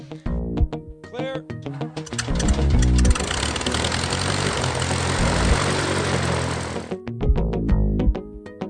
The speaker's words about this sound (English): Background noise throughout the day, but it's just airplanes, so it's not really noise. Good background noise.